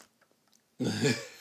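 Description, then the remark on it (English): After a short hush, a burst of wet, smacking chewing follows, someone working through a mouthful of food in one loud, noisy stretch lasting under a second. “My chewing sounds that was, over the podcast.”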